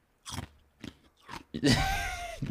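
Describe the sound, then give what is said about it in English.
Crisp crunches of someone chewing ice: three short bites in steady rhythm, then a longer, louder grinding crunch. No one talks. “Stop chewing ice on the podcast.”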